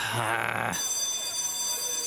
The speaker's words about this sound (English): Well, that's the warning bell.